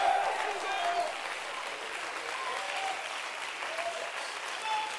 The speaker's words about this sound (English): Why are you clapping your hands? Why are you waving your hands?